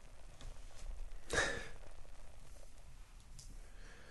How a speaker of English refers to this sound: Changes every time I sniff it. It's moving around on me.